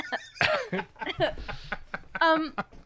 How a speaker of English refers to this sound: yeah, the coughing, we'll keep the coughing. That's perfect.